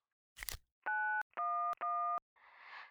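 Three steady electronic telephone keypad tones beep in quick succession as 911 is dialed, loud, after a brief rustling click and before a soft burst of static-like noise.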